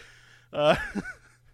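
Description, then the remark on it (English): A single small, stifled sneeze: a quick voiced catch that rises in pitch, then a short breathy burst, all over in about half a second above a faint steady hum. “I have no but, small sneezes.”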